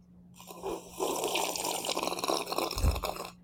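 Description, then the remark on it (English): A long, noisy slurp of tea lasting about three seconds, wet and hissy, as someone loudly sucks in a sip, imitating how a tea sommelier tastes tea, with no talking over it, ending in a brief low gulp. “So, but he was going like this, and this, you know, people on here probably won't be able to see me, obviously, but he was like sipping it.”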